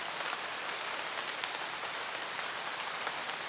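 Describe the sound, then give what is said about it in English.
Steady rain patters on a hard surface, a dense continuous hiss of drops with faint individual taps, even throughout with no voices. “Allow yourself to adjust to your surroundings and bring with you the soothing sound of the rain.”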